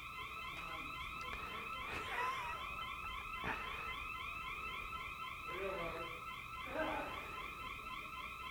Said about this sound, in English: You caused the alarm to go off.